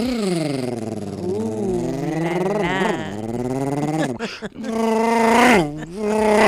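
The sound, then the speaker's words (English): A voice mimics a revving car engine, likened to a hot Mustang 5.0, a sustained buzzy vocal drone whose pitch climbs and dips in surges, with a brief break before one last rising rev. “That sounds like a nice hot Mustang. Mustang 5.0.”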